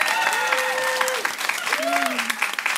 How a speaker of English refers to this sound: We're going to do an applause-o-meter. If you think it should make it in, applause.